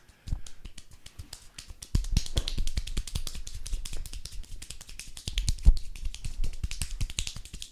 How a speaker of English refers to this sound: Dude, did you know I could clap really fast? Look at this. Look at this. Look at this. Look at this. Yeah. I clap really fast.